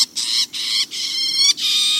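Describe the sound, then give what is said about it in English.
Four loud songbird calls in quick succession in dense Florida scrub, each a harsh, buzzy, harmonic-rich burst separated by brief pauses, with no voices or other sounds. “Eastern towhees and loggerhead shrikes are common in the dense scrub habitat.”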